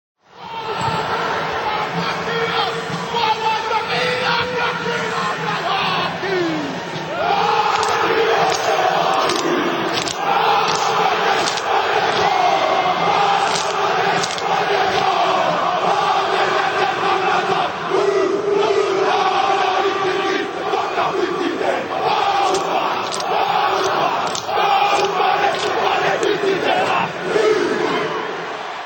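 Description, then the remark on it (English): A huge crowd chants and shouts in unison before the start of a rugby international, the roar rising and falling in a steady, rhythmic pattern with sharp percussive bursts, loud and continuous throughout. “So let's have a listen now to some of this rhythmical, not necessarily sung, but rhythmical shouting that happens before the start of a rugby international.”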